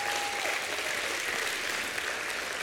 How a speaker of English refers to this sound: If you believe that, give God another hand clap of praise.